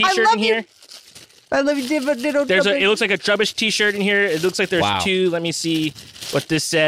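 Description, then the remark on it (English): Plastic packaging with a zipper crinkles and rattles right on the microphone as a package is opened, in bursts of crackly rustling, mostly underneath steady, animated talking. “So I can make sure to rattle that plastic right on mic.”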